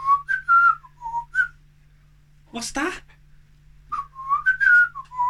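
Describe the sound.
A person whistles a short, bouncy tune in clear, pitched notes, imitating a parrot, then breaks off for a brief spoken question before whistling the melody again. A low steady hum runs underneath.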